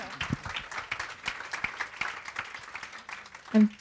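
An audience applauds steadily throughout, a dense patter of many hands clapping at a moderate distance, with a brief louder hum-like sound cutting in just before the end.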